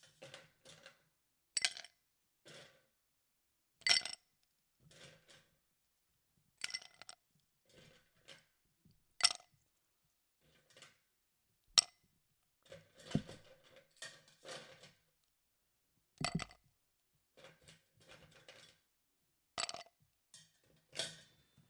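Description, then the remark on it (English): Ice cubes clink and clatter into a pre-chilled glass while a cocktail is being made, in an irregular series of bright, sharp knocks, some single and some in quick clusters, fairly soft overall with no voices. “Now I'm putting ice into the chilled glass.”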